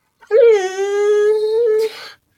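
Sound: dog whimpering and yipping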